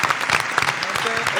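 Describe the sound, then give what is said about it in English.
A short burst of applause for Sebastian Telfair from a small group in a room, dense overlapping claps at steady loudness with some voices mixed in underneath. “Yeah, you know let's clap it up for Sebastian Telfair.”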